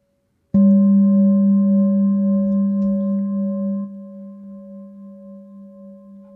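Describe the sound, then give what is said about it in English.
A meditation bell is struck once, sharply, then rings on in a long, steady, wavering hum of clear overtones that gradually softens without fully fading. No one speaks. “The sound of the bell and the movement of the belly as it rises and falls.”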